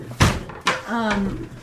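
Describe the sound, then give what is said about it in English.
A door is pushed shut with a loud thud, followed by a second softer knock as it settles, then a short voiced sound from someone. “I am going to close the door.”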